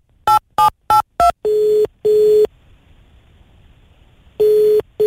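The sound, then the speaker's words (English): Four quick keypad beeps dial a number to call Douglas Lim, then a steady ringback tone purrs in a double-ring pattern, pauses, and starts ringing again. No one speaks, and the tones sound clear. “I've been trying to call Douglas every single day on the show, but the man doesn't pick up.”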